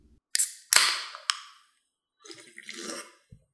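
A drink can cracks open with a few sharp pops and a fizzing hiss, followed by a soft, airy slurp of sipping and a dull little knock at the end. No one speaks.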